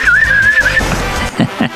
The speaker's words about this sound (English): I did a whistle then, did you hear it? Sorry.